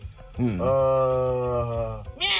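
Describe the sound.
A person imitates a cat's meow with one loud, drawn-out vocal call that rises in pitch and then holds steady for over a second, with nothing else around it.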